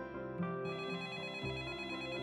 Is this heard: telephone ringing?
yes